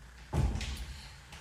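A door swings shut with a single muffled thud, followed by a brief rattle of the latch settling, then quiet room tone.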